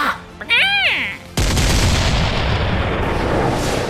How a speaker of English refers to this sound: And with that, the cannon blasted,